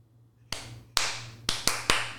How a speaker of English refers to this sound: Clapping in rhythm to get attention, even good. In unnecessary small group situations.